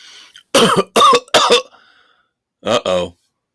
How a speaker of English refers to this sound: wheezing and choking and coughing.